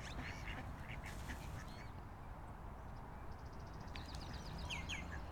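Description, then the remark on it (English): A bird calls repeatedly in quick, chattering bursts over a steady low rumble, with nasal, duck-like quacking notes; no one speaks. “That's a bird.”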